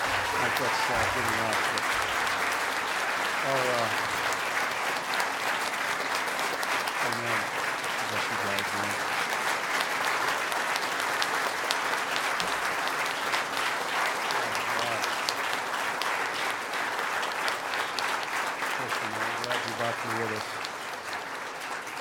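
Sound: audience applause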